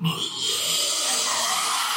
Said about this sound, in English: A couple was out camping in the middle of these woods, when suddenly they heard growling coming from the bushes.